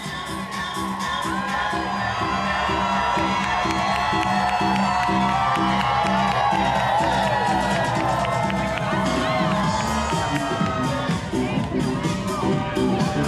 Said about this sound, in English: All right, we got another runner. We got another very late in the race runner. The crowd is getting hyped. The sea is parting. Here we go.